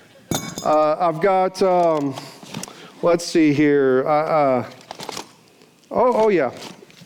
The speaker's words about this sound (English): I have this tool bag here, and I have a few things in this tool bag. Let me see if I can find them. I've got these channel lock pliers here, and really big crescent wrench. That's whenever one of the nuts is arguing with you.